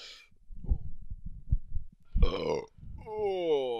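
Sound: burp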